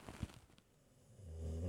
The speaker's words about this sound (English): Oh, that was a loud snore. You had to have heard that one, right? Let's see. Let me see if I can get close to her while she snores.